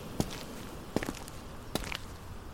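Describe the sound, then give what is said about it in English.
Slow, evenly paced footsteps crunch and scrape over a gritty, dusty floor across a great ballroom, each step a crisp, sandy crackle above a soft, steady background hiss. “I walk across the great ballroom, feeling dust and grit crunch and scrape beneath my feet.”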